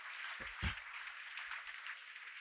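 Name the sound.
audience hand clapping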